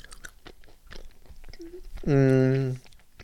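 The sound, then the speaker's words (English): Wet chewing noises of someone eating a Snickers chocolate candy bar, soft irregular smacks for a couple of seconds, followed by a short, loud voiced hum. “Chewing on a Snicker here.”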